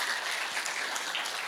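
A crowd applauds steadily, dense clapping from many hands filling the room at an even, moderate loudness with no voices rising above it.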